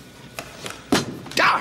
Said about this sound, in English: She slams her cane on the ground.